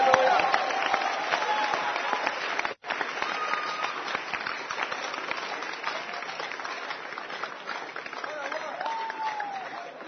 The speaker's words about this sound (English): Clap your hands for your own self.